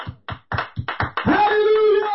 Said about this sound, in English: Somebody say amen and clap your hands unto the Lord.